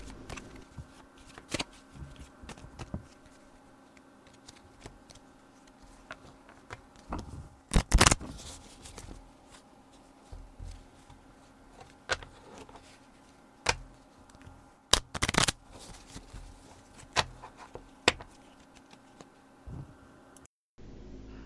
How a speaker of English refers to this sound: So I'm going to shuffle the cards. Okay.